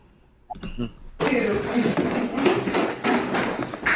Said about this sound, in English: I heard footsteps. That's undeniable. Wow. Right? Yeah, that's really loud. Yeah, that's pretty cool. And, everybody's in front of me going down the stairs, and nobody was running downstairs there. Everybody was walking down.